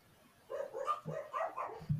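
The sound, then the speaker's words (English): A dog barks in a quick run of several short, yappy bursts, moderately loud, with no one talking over it. “I'm going to go with whatever the dog said.”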